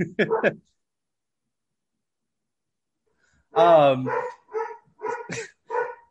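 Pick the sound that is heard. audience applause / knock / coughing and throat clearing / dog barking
dog barking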